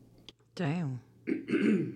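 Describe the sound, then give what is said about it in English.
A loud throat clearing with a rough, voiced rasp, followed after a short pause by a second harsh burst of coughing and throat clearing. “Sorry about that. I put my cough button on.”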